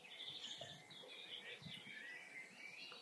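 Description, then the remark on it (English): Several birds sing and chirp at once at dawn, a busy overlapping dawn chorus of high, bright warbles and tweets carrying steadily through the whole stretch, with no talking. “The birds are really starting to sing now.”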